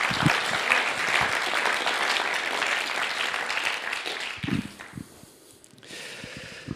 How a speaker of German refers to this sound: Lass uns ihm einen herzlichen Applaus geben, dass du kurz auf die Bühne kommst.